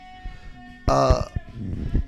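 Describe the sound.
A single loud, harsh yell bursts out for under half a second at a house party, then fades back into a low murmur of background voices and clatter.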